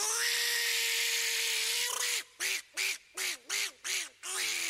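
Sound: duck quacking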